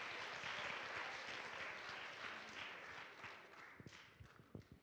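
A group bursts into steady applause for a child after an attempt to hold soccer balls, a dense wash of overlapping claps that thins out toward the end into a few scattered, separate claps.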